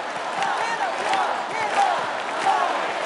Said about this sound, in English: Yeah, and then at the end of the song, the whole crowd starts chanting, love, love.